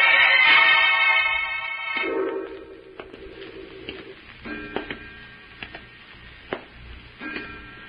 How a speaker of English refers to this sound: I hear footsteps in this room. Who's there?